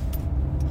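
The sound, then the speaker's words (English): A car's steady low engine and road rumble, heard from inside the vehicle as it slows to a stop behind another car, with two faint high clinks over the drone. No one speaks. “I'm stopping behind a car.”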